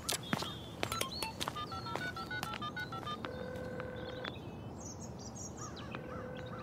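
A quick series of electronic keypad tones as a number is dialed on a phone to call a friend, several short beeps at varying pitches, clear, followed by a steady ringing tone over faint background noise.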